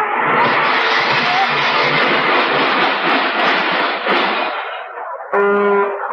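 A loud, sustained roar of a speeding vehicle builds for several seconds, then cuts off into an abrupt, clanging car-crash sound effect, with no voices.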